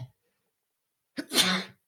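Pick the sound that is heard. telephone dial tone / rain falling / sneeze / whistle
sneeze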